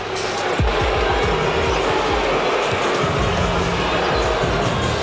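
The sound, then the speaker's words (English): A Milwaukee Bucks home crowd at Pfizer Forum boos its own team in a loud, steady, sustained roar during a game against the Jazz, who hit 11 threes in the first quarter. A sharp thud comes early on, with faint ball bounces and court noise under the din. “The Bucks home crowd letting them hear it, getting booed in their own building, but 11 threes in the first quarter, I mean, like, that's...”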